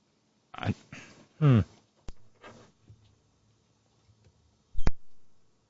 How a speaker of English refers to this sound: I hear like a keyboard clack or something, but I can't hear you.